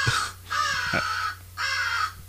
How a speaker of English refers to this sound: That's an American crow.